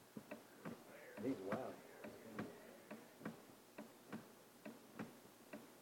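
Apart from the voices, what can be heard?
antique clock ticking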